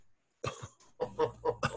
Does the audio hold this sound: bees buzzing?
no